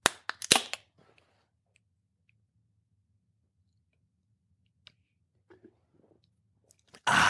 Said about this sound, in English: Hold the beer can in place to the mouthpiece. Then you're going to put your mouth on the mouthpiece and shotgun.